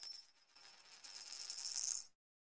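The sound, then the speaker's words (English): A bright, metallic coin sound effect played to thank viewers for donations (super chats) on a show: a quick chime, then a shimmering cascade of jingling coins that builds for about two seconds before stopping abruptly. No voices. “Thank you for the coins.”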